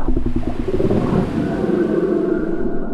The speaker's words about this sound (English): As the men got closer, a heart-stopping growl erupted from the wrecked boat.